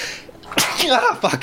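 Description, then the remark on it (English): A single loud sneeze: a sharp breathy burst that trails into a short voiced exhale, with quieter noise before it and a brief breath afterward. “Gesundheit.”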